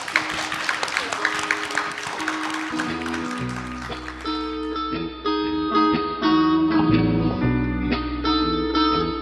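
A burst of audience applause, dense and crackling, fills the first few seconds, then fades as steady instrumental music with sustained tones takes over.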